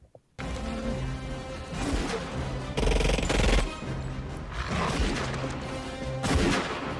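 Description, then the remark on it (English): Loud, dense film gunfire fills a scene in which human security guards shoot at gorillas in a Congo city: rapid bursts of shots and booming blasts over a sustained rumbling score, with sharp crashes punctuating the chaos and no voices heard. “So, for those of you just listening, there are monkeys being shot at by humans, and one of the humans just got mauled.”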